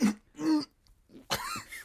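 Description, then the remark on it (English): A person coughs several times: a short cough, a second one, then a longer, rougher throat-clearing cough, deliberately performed rather than natural. “And then you have to, like, you cough like this.”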